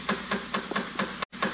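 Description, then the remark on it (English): A rapid, steady series of about seven knocks on a house door in the evening by a man delivering a message, evenly spaced, heard alone over a low background hum with no talking. “The door.”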